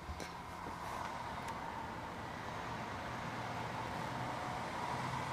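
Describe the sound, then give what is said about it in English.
Steady, continuous rumble of street traffic outside a city hotel room, broad and even with no distinct passes. No voices. “A bit hot though, and yeah, the traffic outside.”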